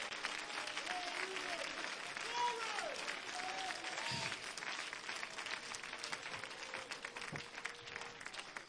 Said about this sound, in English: Clap your hands and give God great praise here today.